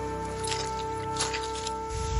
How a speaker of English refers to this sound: We step off the trail and onto soggy, waterlogged turf around us. The ground is blanketed by bogs. Our feet sink just a little with each step.